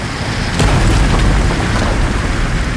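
A deep, continuous roar of sea water surging through mine tunnels, loud and rumbling with heavy low-end churn and a sharp crack early on, with no voices.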